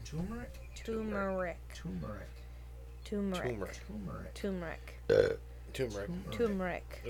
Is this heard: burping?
yes